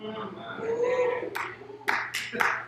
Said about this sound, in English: Somebody ought to clap right there. If I ain't clapping, I'm going to clap.